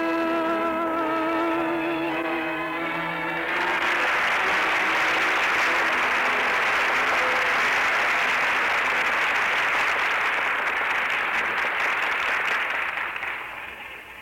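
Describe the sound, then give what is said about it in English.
A musical phrase with sustained tones ends, and a large crowd bursts into loud, steady applause that carries on for about ten seconds before beginning to fade. “Listen, they're still applauding.”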